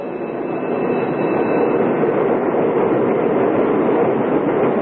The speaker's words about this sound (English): They exchange idle small talk till the big, shiny electric cars skitter to a stop along the platform and they scatter aboard and scramble for seats.